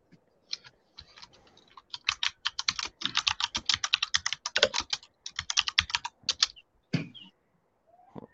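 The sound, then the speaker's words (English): Rapid typing on a computer keyboard, a dense run of crisp clicking keystrokes in quick irregular bursts, with short pauses, ending in a few scattered taps. No voices are heard. “he can also type without looking at the fucking thing.”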